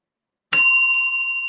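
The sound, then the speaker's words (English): A single sharp, loud strike of a handheld bell held in the hand, its bright metallic tone ringing on and slowly fading after a moment of silence. No voices are heard. “Got my bell, David, already. Got my bell in my hand, I'm ready.”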